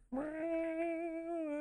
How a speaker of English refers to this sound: Can you stop? Can you stop with your sarcastic violin. Cat violin? Yeah, it was kind of weird, right? It's like out of tune. Meowing. I haven't played it in a second.